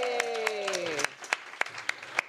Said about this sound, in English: And a round of applause for your bartenders and servers. Tonight. Yay!